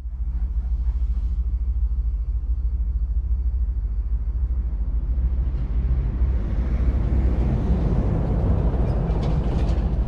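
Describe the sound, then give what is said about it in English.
Steady low rumble of railway machinery fills a Transport for London train depot where trains are parked out of service, with a heavier train sound swelling in the second half, a busy depot ambience with no voices. “You can hear the trains around you, and as you enter or leave a depot, you are tolled.”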